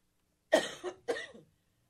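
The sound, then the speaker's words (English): Two harsh coughs from a person in quick succession, each a broad rasping burst with a short tail, heard alone against silence. “Excuse me, I am coughing.”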